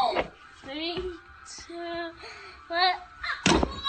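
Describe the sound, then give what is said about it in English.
A body hits the floor with a couple of heavy, dull thuds after a child's failed backflip attempt, one near the start and a louder one near the end, amid strained vocal groans and voices. “You knocked the wind out of yourself.”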